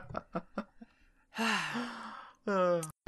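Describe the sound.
A sharp, intense gasp, loud, drawn in with a rough, breathy rasp. A few short soft sounds come just before it and a brief voiced sound follows.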